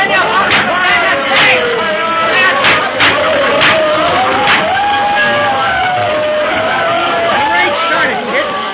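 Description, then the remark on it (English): A dense, loud crowd roars and chatters continuously, with scattered shouts and whoops rising out of the babble, as spectators watch a fight. “It's tough to get through this crowd watching the fight.”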